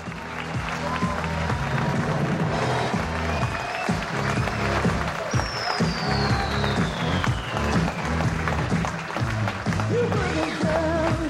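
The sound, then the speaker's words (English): A sold-out crowd at Cobb's Comedy Club in North Beach, San Francisco, during San Francisco Sketch Fest, bursts into sustained applause with cheers and shouts mixed in, loud, with continuous dense clapping filling the whole stretch while voices whoop over it. “Lots of enthusiasms. People over here were yelling something.”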